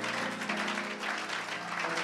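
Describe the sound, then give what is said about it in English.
A church audience claps for the Lord during a service ending 21 days of prayer and fasting: a dense, sustained wash of many hands applauding at once, with a faint musical hum steady underneath. “As you clap your hands, the Lord is opening doors for you.”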